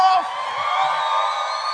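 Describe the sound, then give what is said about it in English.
A church audience cheers and shouts together, a dense wash of whoops and yells at a steady, loud level for a couple of seconds. “We're a noisy church.”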